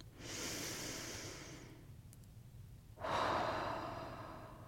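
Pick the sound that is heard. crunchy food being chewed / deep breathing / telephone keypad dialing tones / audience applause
deep breathing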